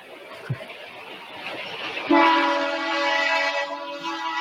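A train rumbles past with a steady roar, then a loud, sustained horn blares in from about halfway through and holds to the end, powerful.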